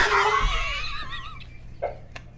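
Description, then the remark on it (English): A voice imitates high falsetto screaming: a loud, wavering wail that slides and trembles before trailing off, followed by a couple of short breathy vocal bursts. “It sound like 100 bitches in the back of the plane screaming in falsetto.”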